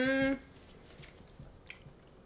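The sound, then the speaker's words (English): Crunchy munching, like chewing on a raw carrot, with a few soft crisp bites spread over a couple of seconds after a brief hummed voice sound at the start. “Every time you ask me a question, I'm like munching on a carrot.”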